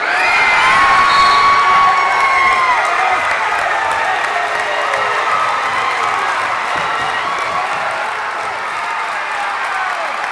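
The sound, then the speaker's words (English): A loud basketball crowd cheers and shouts continuously at Glennie Gymnasium as the Monmouth men's basketball team plays in the Midwest Conference Championships, with high whoops and scattered applause sustained throughout at a steady, energetic level. “Those were a few of the sounds from Glennie Gymnasium last weekend as the Monmouth men's basketball team won two thrilling games in the Midwest Conference Championships.”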